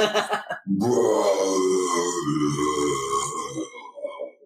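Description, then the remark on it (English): One of his thundering trademark belches: a loud, drawn-out belch rumbles for several seconds after a couple of short guttural bursts. It is deep and throaty, alone with no talking. “And, yeah, not the thought has barely left your mind when behind you hear one of …'s thundering trademark belches.”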